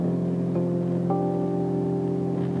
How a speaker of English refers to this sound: The droning of a jet plane far above your head in an open sky.